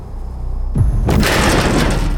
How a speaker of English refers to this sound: One of the creatures slams into one of the glass windows of the whare kai. We all jump in fright. What the hell is that?